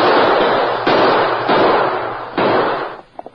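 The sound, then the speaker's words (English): Four loud gunshots fired at a man fleeing on horseback, at uneven intervals, each with a sharp crack and a long rumbling tail that blurs into the next, followed by a few faint clicks. “Shoot him.”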